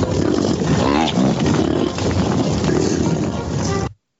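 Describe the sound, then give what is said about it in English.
Deep, rumbling bison grunts carry over steady wind noise, loud and nearly continuous for about four seconds, with a lower moo-like drone underneath before it cuts off abruptly. “I'm going to play it again because I love it. Colorado Buffalo.”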